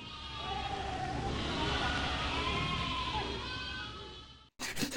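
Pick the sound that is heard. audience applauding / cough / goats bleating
goats bleating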